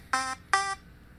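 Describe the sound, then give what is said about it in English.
Two loud, harsh electronic buzzes from a timer, each lasting about a fifth of a second, separated by a short gap, with a faint low hum underneath and no one speaking. “Did I fuck my timer up?”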